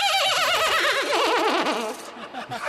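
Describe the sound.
A loud horse-like whinny: a shaky, warbling cry that wavers rapidly in pitch and slides downward over about two seconds before trailing off.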